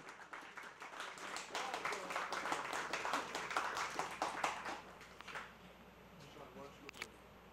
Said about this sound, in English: We want to, there's applause, so feel free.